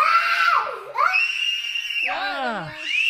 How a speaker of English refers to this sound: All right, why are they screaming?